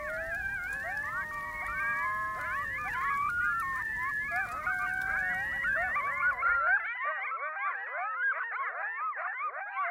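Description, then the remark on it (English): A pack of coyotes in Yellowstone, just woken up, yips and howls together in a wild, overlapping three-dog chorus of wavering, sliding cries, loud, with a low rumble of wind or water beneath for the first several seconds. “The coyotes in that area had woken up, and they all went off in this 3-dog chorus.”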